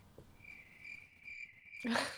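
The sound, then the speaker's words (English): A steady, high-pitched insect drone of cicadas trilling outdoors in the woods, fairly faint and continuous, cut off at the end by a short, louder burst of noise. “You guys, that's what it sounds like. Yeah. Outside in the... There were more cicadas, though.”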